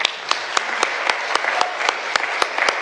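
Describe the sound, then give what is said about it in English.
A crowd applauds steadily, a dense wash of clapping with sharper individual claps standing out in a regular rhythm, about four per second, holding at an even, fairly loud level. “Hi, I just wanted to give Ryan another round of applause because that was great.”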